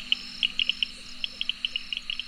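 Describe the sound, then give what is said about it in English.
A chorus of frogs calling at night in the wet monsoon season of India, quick bright chirps repeating irregularly over a steady high hum of other callers, with no voices present. “Suruchi Pandey takes you on the fascinating worlds of the vocal frogs as they chant the hymns in the wet monsoon season of India.”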